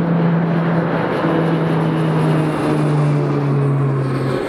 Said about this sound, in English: I'm watching a plane fly overhead.